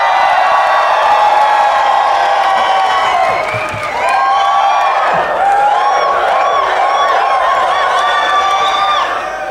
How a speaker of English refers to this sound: All right, I won't lie to you. God, these people cheer weird.